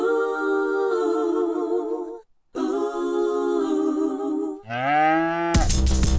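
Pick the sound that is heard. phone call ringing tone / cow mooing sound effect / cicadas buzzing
cow mooing sound effect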